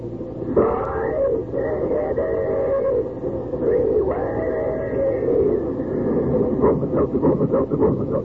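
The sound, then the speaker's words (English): A steam train sound effect: a steady rumbling roar with two long whistle blasts, then quickening rhythmic chuffs near the end, loud with no voices. “But when it's a common sick headache that's got you down, take this tip from our educated train.”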